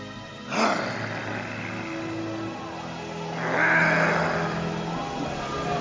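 A lion's roar comes in two rough, growling bursts: a sharp one early on, then a longer, swelling roar a few seconds later, with a low rumble sustained between them.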